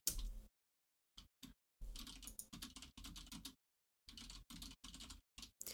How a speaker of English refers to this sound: I thought when you said, oh no, there were typing, I thought you were going to accuse me of typing too loud, which I was. I mean, I did hear the typing, yes.